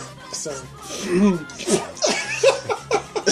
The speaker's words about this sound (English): Clearing your throat.